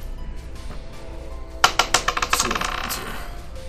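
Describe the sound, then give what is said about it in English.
Dice are rolled onto a table for a wisdom save after a quiet start, a quick burst of sharp clicks and rattles that bounce and settle over about two seconds, fairly loud. “Did you roll the same dice?”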